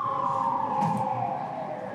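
An ambulance siren wails steadily as it drives by in Los Angeles, its sustained tones sitting clearly above a low hum of traffic, fairly loud and continuous throughout with no talking.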